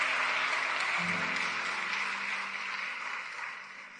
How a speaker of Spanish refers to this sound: Oh, dale ese aplauso fuerte a Él en este día.